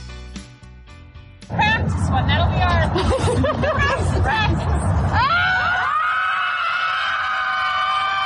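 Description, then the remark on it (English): A group of people at an empty football field screams to let off steam: after a quiet start, many overlapping loud, sustained yells and shrieks trail into a few long, drawn-out high-pitched cries. “They just scream to let it out.”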